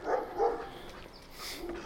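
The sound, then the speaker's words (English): A dog barks twice in quick succession near the start, then fainter yips and outdoor background noise carry on without any talking. “Oh, look, at all the dogs are out.”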